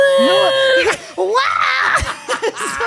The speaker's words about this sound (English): I'm going to stop screaming so into people's ears.